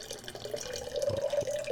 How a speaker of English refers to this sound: I'm going to pour it on the table.